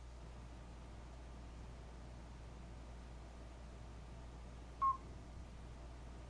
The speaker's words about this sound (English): That was me whistling. Like a whistle or he's cheating is what he's doing. I was whistling.